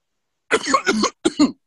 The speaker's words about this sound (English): That shit got him ready to cough up a lung.